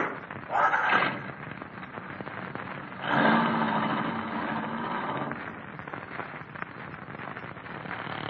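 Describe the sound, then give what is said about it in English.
An old car engine rumbles steadily, revving up in two loud surges near the start before settling into a rough, continuous run. No one speaks. “This your car? Yeah. I'll sure be glad to get rid of this clunk.”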